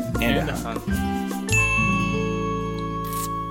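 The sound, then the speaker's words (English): Over lively chatter, coffee mugs knock together once in a toast, giving a sharp clink that rings on with a bright, lingering tone for a couple of seconds. “Let's all be drinking coffee when we start. Hey, cheers up in the middle, I think.”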